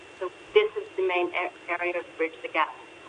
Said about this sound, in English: you're a little bit distant. Could you just get a little bit closer to the phone, maybe if it's on speaker? Maybe just take it off speaker?